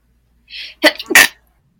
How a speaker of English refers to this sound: Oh, excuse me. I'm gonna sneeze.